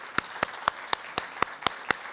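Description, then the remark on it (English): Applause from a standing church audience honoring a group, heard as a steady run of about nine crisp, evenly spaced claps at a brisk beat, fairly quiet, with no voices over them. “And we want to give them a big round of applause.”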